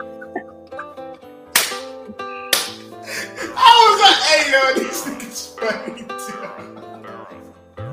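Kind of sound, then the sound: impact, slap to the face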